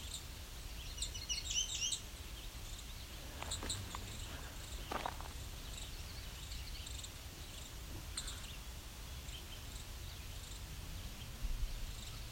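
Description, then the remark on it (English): A juvenile song sparrow gives a few sharp, isolated ticking calls, spaced irregularly and fairly faint, over a steady outdoor bed of insect buzz and other birds' chirps. “So I've also got juvenile sparrow. Probably a song sparrow looking at me and ticking too, as well as several other birds.”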